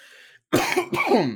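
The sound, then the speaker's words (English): Two loud, harsh coughs burst out in quick succession, raspy and forceful, after a brief quiet moment, like the start of a coughing fit. “Come on with this cough.”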